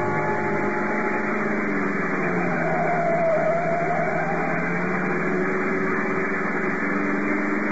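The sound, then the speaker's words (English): A car engine roars steadily as the car speeds along the road toward San Juan, its droning hum constant and loud from start to finish with no voices over it. “Out to the car, fast.”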